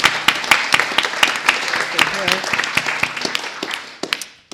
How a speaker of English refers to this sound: So I think she and the team of volunteers have done a terrific, terrific job. So let's just applaud the volunteers once more, too.